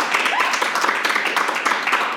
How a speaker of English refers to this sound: I was looking at raw numbers of clappers. No, it's not numbers. It's not numbers. It's actual noise.